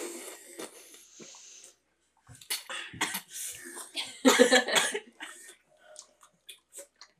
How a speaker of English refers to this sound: Yeah, you can listen to us drink while you, if you want. If not, just skip like 20 seconds, but... Alright, gang, let's show these people how to drink some fucking water.